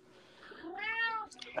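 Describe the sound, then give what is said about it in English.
A single drawn-out cat meow, rising then falling in pitch with a bright harmonic tone, clear, with a faint breathy trailing sound at the end and no talking. “And the cat.”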